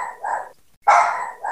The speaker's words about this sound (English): Was that your dog, Honey, out there, you said? Yeah, my dog. It's my fiance's. His name, Honeybee.